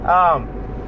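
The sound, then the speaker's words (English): Steady low rumble of road noise inside a moving car on a very hot day, continuous and fairly loud, with a brief voiced sound from someone near the start. “just kind of a way to rant while I drive to give me something to do, to keep me from smoking a cigarette”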